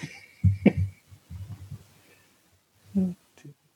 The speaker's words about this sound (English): All right, let me just finish chewing here